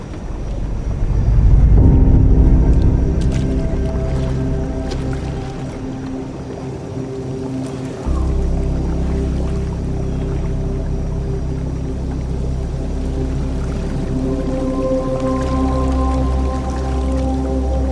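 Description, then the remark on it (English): Jacuzzi water churns and splashes as people get into the jacuzzi, backed by a steady humming drone of running jets that shifts slightly in pitch partway through; no one speaks. “Let's get in the jacuzzi.”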